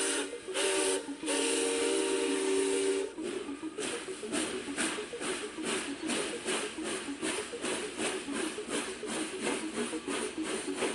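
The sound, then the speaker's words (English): A steam train whistle blows loudly for about three seconds over hissing steam, then gives way to a steady, rhythmic series of hissing chuffs as the engine works. “Oh, did you hear that? We better get on the train.”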